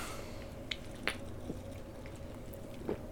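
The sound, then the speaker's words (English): Quiet wet slurping and sipping sounds from someone drinking an orange-flavored Bud Light beer, with a few soft liquid squishes and small clicks over a low background hum; no talking. “Okay, let's give it a little sippy sip.”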